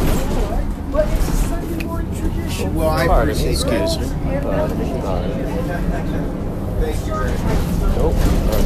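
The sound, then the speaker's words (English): Steady low engine rumble fills a moving bus interior, with indistinct voices of passengers chatting throughout and occasional clatters, all at a constant level. “There's a lot happening on the bus today.”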